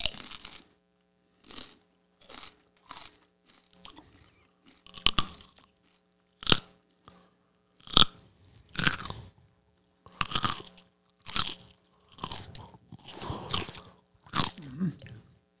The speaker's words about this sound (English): You don't have to swallow. If you want to spit, we'll bring in crunchy carrots. And you can crunch right into the mic